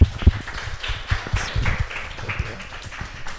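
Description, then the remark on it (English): Hands clap right against a microphone, giving a rapid, uneven run of loud, thumpy claps with heavy low-end bumps, continuing steadily for a few seconds. “I keep clapping on the mic.”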